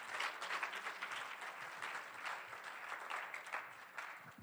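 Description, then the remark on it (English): A church audience claps in praise to the Lord, a dense wash of many hands clapping at once for several seconds, fairly loud and continuous with no speech over it. “Oh, give the Lord a hand clap of praise this morning.”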